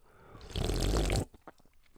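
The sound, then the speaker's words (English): A single loud, wet slurp of someone sipping a razzleberry rain drink, lasting under a second with a gurgly, breathy rush, followed by near silence and a few faint clicks. “You hear that noise, boys and girls? The fucking sip is back.”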